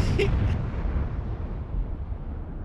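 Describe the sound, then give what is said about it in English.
A single loud explosion bursts at the start, then a heavy low rumble rolls on and slowly fades over the next couple of seconds. “I didn't see what happened, but as we were running away, I heard a big old explosion.”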